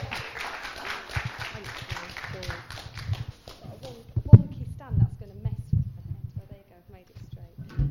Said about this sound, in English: So can we give her a round of applause, make her welcome?